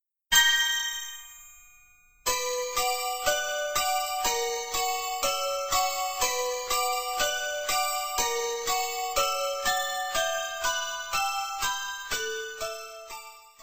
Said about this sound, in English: One Missed Call is great. To this day, is still my ringtone.